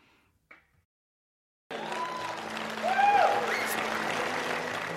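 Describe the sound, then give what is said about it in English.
After a short near-silent pause, an audience breaks into loud, sustained applause, dense clapping that swells slightly midway, with a few voices calling out over it. “Now, I can tell by the applause that most of y'all here are saved, right?”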